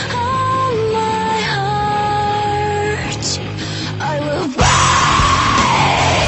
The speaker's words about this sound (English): Basically, a girl screaming at the beginning, just angsty.